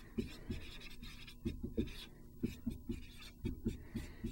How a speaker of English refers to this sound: Let me write that.